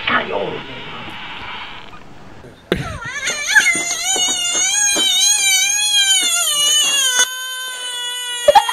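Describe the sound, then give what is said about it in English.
An angry, screeching frog taken out of the water gives a breathy, hissing rush of air, then lets out a long, loud, wavering wail, high and cry-like, lasting several seconds before cutting off. “He's letting all the air out.”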